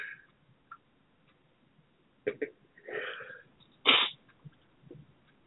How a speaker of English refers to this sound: Excuse me, y'all. I'm yawning.